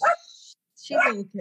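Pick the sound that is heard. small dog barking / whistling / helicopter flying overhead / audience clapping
small dog barking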